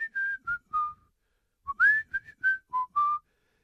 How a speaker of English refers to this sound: And he's whistling the song that Nat sings to Mary.